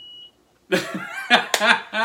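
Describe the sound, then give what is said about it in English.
A single short, faint electronic beep from a money counting machine counting bills, which beeps every 100, sounds first, followed by a pause and then people talking and laughing loudly, the beep not returning. “Wait, it only beeps every 100? So it's counting ones?”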